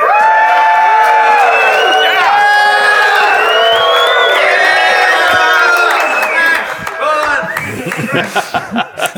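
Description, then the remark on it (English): A loud live crowd in London at a .NET Rocks show cheers and shouts, many voices overlapping in a dense, sustained roar for several seconds before it thins into scattered yells and bursts of noise. “It gets them all rowdy.”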